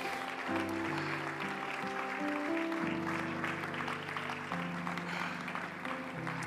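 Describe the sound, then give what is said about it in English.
An audience claps hands unto the Lord in a steady, dense patter that runs throughout, over sustained, loud organ-like chords that shift pitch every second or so. “Oh, let's clap our hands unto the Lord.”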